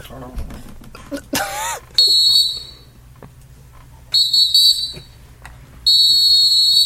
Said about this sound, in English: Okay, ref whistle going all the way through. You almost cut that ref off when he finally got his act together.